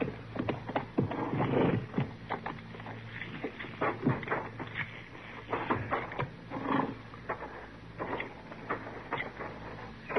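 Horses' hooves clip-clop in an uneven, clattering rhythm of sharp knocks over a low steady rumble, with no voices.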